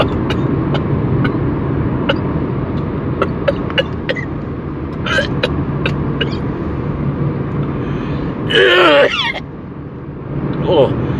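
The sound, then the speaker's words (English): Steady low rumble inside a moving car, with scattered small clicks and faint muffled voices, then a short harsh cough near the end. “Why is no one else coughing in the car?”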